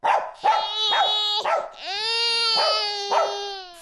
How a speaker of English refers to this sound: Coming up next, dog barking at crying baby.